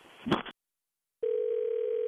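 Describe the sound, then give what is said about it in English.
A brief burst of muffled noise cuts to silence, then a steady, unbroken telephone dial tone hums at a single mid pitch, loud and continuous after the call drops. “Yeah, I think we were disconnected.”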